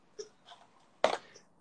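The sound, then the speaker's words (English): A toddler whimpers and fusses in short, soft bursts, then lets out one louder, sharper wail before settling back to quiet whines, with no talking. “He's getting a little fussy here.”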